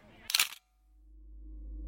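A single crisp cell phone camera shutter click, a short bright snap as a picture is taken in a classroom, followed by a low rising rumble of background noise.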